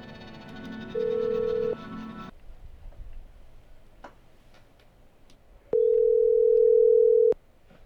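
A telephone line hums with a dial tone, then steady electronic ringing tones sound twice, a short pulse followed by a longer one, clear with no voices, as a phone call is placed.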